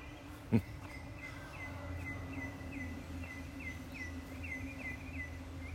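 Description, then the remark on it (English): Birds sing before dawn at 5:21 a.m. on 19 December, chirping in a steady, repeating series of short high notes, fairly faint, over a low rumble of traffic, with a single sharp knock near the start. “I just love listening to the birds and to the traffic.”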